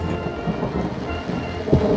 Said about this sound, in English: And now it's raining. Oh, my terrace plot is rained out for the day, I guess. We're on a rain delay. Game called on account of rain.